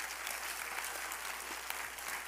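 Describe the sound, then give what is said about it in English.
A church audience claps their hands during an evening sermon at the pastor's call, a dense, steady burst of applause, many overlapping claps blending into a continuous crackling wash at an even, moderate loudness with no voices on top. “Clap your hands if you believe that tonight.”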